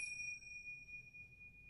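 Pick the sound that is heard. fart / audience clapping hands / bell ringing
bell ringing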